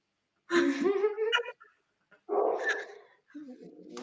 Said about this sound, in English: That damn dog, he's my dog and the favorite living thing on earth, but I want to kill him right now.